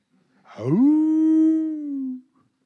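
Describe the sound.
A tall man sings during worship, his voice imitating a wolf howl: one long, loud howl that swoops upward, then holds a steady sustained tone before cutting off, with no talking.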